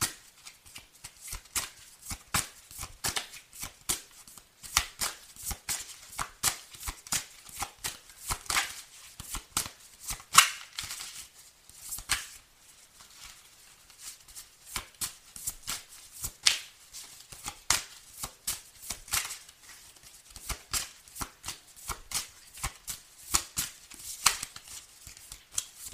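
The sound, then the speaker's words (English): Cards being shuffled, a steady run of crisp, rapid riffling clicks and flicks that rise and pause in bursts, with no voices over them. “Let me go ahead and get some cards right quick, because usually I can tell when I shuffle what some of the energy is.”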